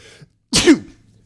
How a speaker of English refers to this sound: I'm going to sneeze.